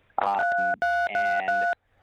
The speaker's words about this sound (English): Something's going on where you keep on pushing the touch tones on your phone. I don't know if it's your cheek or what kind of phone you're on.